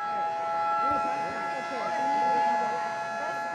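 A steady, sustained siren drones at an even pitch for the whole stretch, signalling the time to break the fast during Ramadan at a shrine, rising above a lively murmur of many people gathered there chattering.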